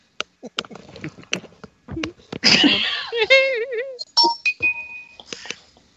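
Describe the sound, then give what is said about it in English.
A mobile phone notification from the Words with Friends game goes off: a quick warbling electronic trill, then a few short, steady high-pitched tones, with scattered clicks, breathy vocal sounds and a burst of noise around it. “What is that noise? Oh, it's my phone.”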